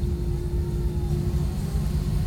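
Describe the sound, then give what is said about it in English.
A steady, loud airplane engine drone with a low rumble and a constant humming tone, recorded aboard a flight to Orlando International Airport, while a baby's crying stays faint and mostly buried beneath it. “Well, the engine sounds louder than the actual baby, doesn't it?”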